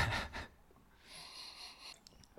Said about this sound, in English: Again, I've said this in the past and you keep alluding to the fact that I'm sniffing grapefruit, but it just smells like lemon to me.